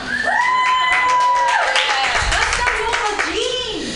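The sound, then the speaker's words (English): At the Mutiny Radio Comedy Festival, a crowd bursts into sustained applause for the station managers, with rapid, dense clapping, while whoops and high cheering voices rise and fall over it throughout. “How about a big round of applause for all the station managers that you see here tonight?”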